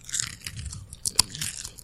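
Crisp, crackly crunching of a salted snack that tastes like dip being chewed, a run of irregular bites with one sharp loud crack near the middle, no talking over it.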